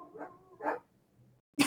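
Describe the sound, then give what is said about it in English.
Several quick, excited dog barks and yips in a short burst, ending in a sharper, louder bark. “My dogs are excited.”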